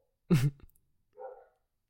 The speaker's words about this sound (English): Hold on. My dogs are barking. Oh, my God.